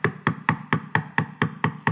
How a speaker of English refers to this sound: Knock. Keep knocking.